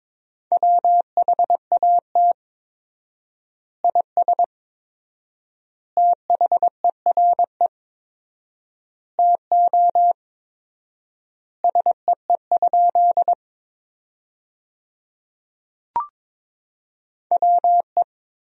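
Morse code practice tones at 22 words per minute, sending sentences built from the top 100 words with 4x word spacing: a steady mid-pitched beep keyed in quick dots and dashes. Short groups are separated by long silent pauses, with one sharp click near the end and no voices.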